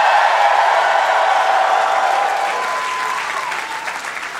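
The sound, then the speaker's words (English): A live crowd in Portland claps and cheers loudly and steadily, a dense wash of applause with whoops mixed in, fading slightly toward the end. “Thank you for cheering at that, buying me some time to unlock my laptop.”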